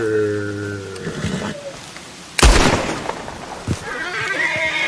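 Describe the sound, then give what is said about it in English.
In a video game, a horse whinnies with a drawn-out, wavering cry, then a single loud, sharp gunshot cracks midway through as the player shoots the horse, followed by rustling, splashing game ambience. “Shooting, putting down his horse, too.”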